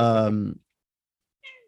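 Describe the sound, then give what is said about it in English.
A female domestic cat named Daisy lets out a loud, drawn-out meow, followed after a pause by a short, quieter chirping mew. “Sorry, my cat's decided that she wanted to come stand in my lap.”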